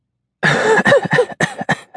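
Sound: man coughing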